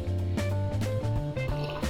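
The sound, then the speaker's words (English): A few short, wet slurping sips of coffee, with soft breathy bursts between them, set over a steady tonal hum with no talking. “I'm going to take a sip of my coffee here.”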